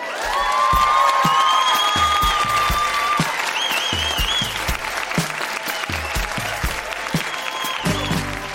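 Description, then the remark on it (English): An audience at the Grown-Ups Read Things They Wrote as Kids event in Winnipeg claps loudly and steadily for the readers, with scattered whoops and cheers rising over the dense applause before it gradually thins out. “Huge round of applause for all of the readers.”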